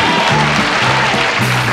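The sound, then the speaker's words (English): A crowd applauds loudly and steadily after a comedian is introduced, dense clapping filling the whole moment with no pauses, continuous. “Don't this side force this side to clap, okay?”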